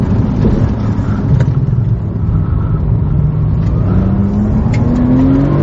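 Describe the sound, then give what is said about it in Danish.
A Porsche 911 Turbo S sports car engine accelerating hard up an Alpine road in the Dolomites, a loud low roar with a rising tone that climbs steadily through the gear, steady and continuous with no talking. “Vi kører Porsche 911 Turbo S i Dolomitterne”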